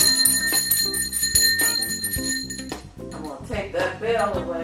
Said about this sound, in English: Take that bell away.